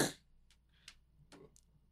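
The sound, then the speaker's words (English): A single sharp, breathy sneeze bursts out right at the start, then fades into near silence broken only by a few faint clicks and rustles. “Excuse me. Bless you.”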